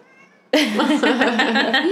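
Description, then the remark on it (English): A male cat on a cat ladder lets out a loud, drawn-out yelling meow for attention, bursting in after a faint half-second lead-in and holding a wavering, insistent yowl to the end. “I know, just a meow.”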